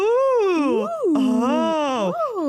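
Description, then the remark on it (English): One voice imitates a game show audience, like the crowd noises in the background of The Price is Right, with drawn-out, sliding 'ooh' and 'aah' cries, the pitch swooping up and down over about three loud, wordless calls. “That's just my role on today's podcast is to be like the crowd noises in the background of the Price is Right.”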